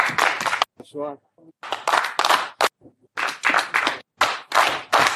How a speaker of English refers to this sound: Somebody going to listen on demand and be like, this is some weird clapping. The yeah, all the wrestlers coming out and seeing him off the way he's doing some of his retirement.